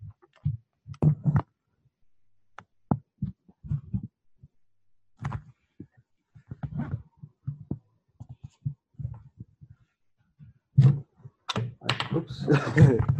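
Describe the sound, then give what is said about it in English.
Irregular ticking from an ignition coil tester, heard through a mat placed over the microphone: sharp clicks and dull thunks in uneven clusters with pauses between, growing denser and louder toward the end. No one speaks. “I'm not sure if you can hear it, but you should be able to hear it ticking.”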